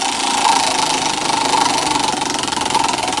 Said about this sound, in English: Let's spin our wheel this morning and find out who's song we're picking.